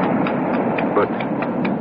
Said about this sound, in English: At last, I'm on the sand. My horse feels the excitement as I do. I feel him extend himself.